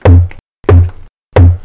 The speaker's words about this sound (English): With these knocks, Maggie and Kate Fox convinced their mother that the house was haunted.